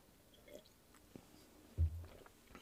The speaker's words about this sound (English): Let's have a sip of our wine